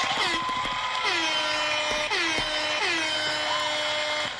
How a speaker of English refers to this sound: Quick little fucking air horn for a medical anomaly, you know, a human anomaly.